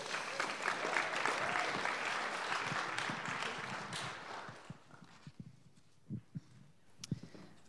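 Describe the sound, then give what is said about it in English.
An audience at a church bursts into steady, dense applause for about four seconds, then it thins out into a few scattered, separate claps before fading to near silence. “So we should give Vanessa a big round of applause.”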